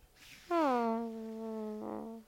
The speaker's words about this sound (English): Oh, it's so sad. That was so sad. Oh my God, that was the saddest fart of the night. I actually felt sad. I felt it leaving. That was a sad breakup fart. I felt it leaving.